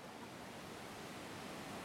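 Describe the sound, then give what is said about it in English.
Quiet lakeshore ambience at a lake where visitors come to fish: a soft, steady wash of water lapping blends into a continuous hiss, with no voices and no distinct individual splashes. “We stood by the water in a few places to sense what visitors would see when they come to the water to fish.”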